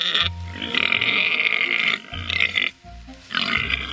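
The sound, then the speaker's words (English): Very large sows, huge pigs turning aggressive at feeding time, grunt and squeal loudly in overlapping bursts, deep guttural grunts under shrill sustained squeals, with a brief lull before the noisy clamor starts up again. They were recorded for the Indominus creature sound. “And at feeding time, the pigs get very aggressive and they bark and squeal.”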